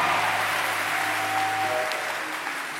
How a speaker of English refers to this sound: Can you clap for yourself for making it to this meeting yourself?